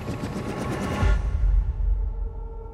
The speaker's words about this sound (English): He feels it before he sees it. A blast of wind and powdered snow driven by whirling propellers. He shields his head with his hands, then lowers them slowly. A National Guard Black Hawk helicopter rises from behind the ridgeline.